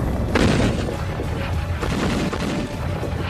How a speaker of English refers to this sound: Heavy, heavy, heavy artillery fire. There's no doubt that it was the beginning of an attack.